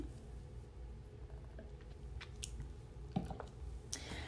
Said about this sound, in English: Okay, let me sip some of my coffee.